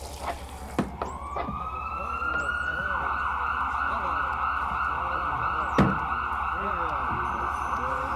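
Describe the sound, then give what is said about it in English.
An ambulance siren wails steadily and loudly, its high tone rising at the start and holding on over a low rumbling drone, with a few sharp clicks along the way, amid many sirens sounding at once. “There goes another ambulance. I don't think I ever heard so many sirens at once.”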